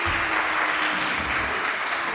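A round of applause from a crowd, dense steady clapping that fills the whole clip at a fairly loud, even level with no pauses and no voices on top.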